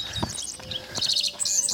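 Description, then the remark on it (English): Several birds chirp and trill in quick, overlapping bursts at dawn on a grassy prairie of rolling hills, bright high notes layered over a soft outdoor background with a couple of low thumps. No one speaks. “The birds, I mean, it's just crazy.”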